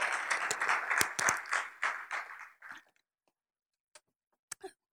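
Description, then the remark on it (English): A church crowd applauds with dense, crackling hand claps for about two and a half seconds, then it tapers off into silence broken by a few isolated late claps. “That's something to give hand clap for.”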